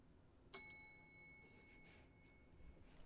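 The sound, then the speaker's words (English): A small bell is struck once, giving a bright, clear ding whose high tones linger and fade over a couple of seconds against a quiet background. “Paid $11 for that bell. I'm getting my money's worth.”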